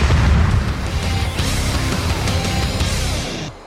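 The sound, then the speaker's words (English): Loud, booming explosion sound effects in a promo ad roll on in a dense, continuous rumble with heavy low end, then cut off abruptly. No one speaks. “You got the explosions.”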